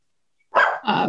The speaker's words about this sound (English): Of course, my dog started barking as soon as I unmuted myself.